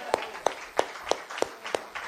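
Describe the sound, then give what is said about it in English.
An audience claps hands in praise, a steady unison beat of about seven sharp claps in two seconds with a soft wash of noise between them. “Let's praise God with a hand clap right now.”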